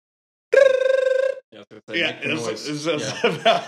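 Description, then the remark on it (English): A voice loudly imitates a harsh, buzzing hotel phone ring, like a fire alarm, for about a second, a steady rattling tone, followed immediately by lively talking. “And then at 3:30, the phone rings, which was just outlandish, because I don't think I've ever been in a hotel where the phone actually rang. And so this phone was like a fire alarm.”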